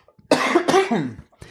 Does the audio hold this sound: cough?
yes